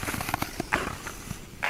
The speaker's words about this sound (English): Most mornings, I'd pull on skates and glide across that lake until my legs were shaky and sore. The hiss and scrape of blades on ice was often the only sound against the deep, cold quiet of the sleeping landscape.